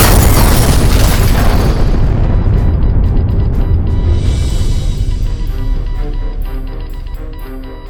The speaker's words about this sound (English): The party heard the beeping from the blue and yellow light atop the wireless transmitter before another salvo slammed into their crumbling sanctuary.